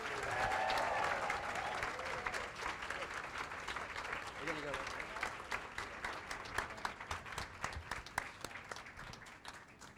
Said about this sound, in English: So let's give a very warm round of applause